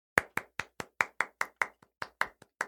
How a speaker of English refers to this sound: I wasn't clapping too because I was soaking up the clap. He's clapping for us.